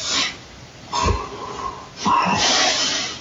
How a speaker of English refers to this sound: So you hear her snoring, but... Oh, okay. You can hear her breathing, but between that you can hear... something.